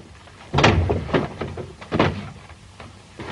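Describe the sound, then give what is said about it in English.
A door thuds shut, followed by a few lighter knocks and rattles like a bolt or lock being worked. There is no talking. “Lock the door.”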